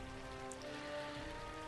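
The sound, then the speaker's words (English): Steady rain falls at Dawnhurst in a continuous, even hiss with no breaks, while a faint sustained tonal hum sits underneath. No one speaks. “It's still raining.”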